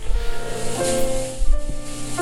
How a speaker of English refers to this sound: The rumbling under our feetsies was indeed the garage door. That's right. Closing.